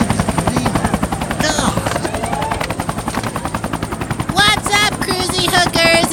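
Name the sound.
helicopter flying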